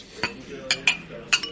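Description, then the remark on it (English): Several bright glass clinks ring out at uneven moments over a low, steady murmur of crowd chatter in Hop Sale, a busy, packed bar. “You can hear that. This is hop sale. It's kind of packed right now.”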